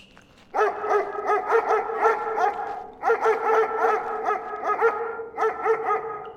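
A two-headed guard dog, mutated by radiation, barks in rapid, high-pitched bursts of yips, loud, with a brief pause midway before the quick barking resumes. No one speaks.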